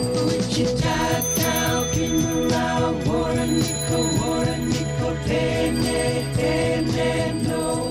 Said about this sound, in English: It has all these bike bells ringing, and it's so warm, but it sort of washes over you.